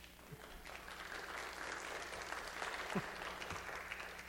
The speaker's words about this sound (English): This is a time when you'd be able to applaud yourself.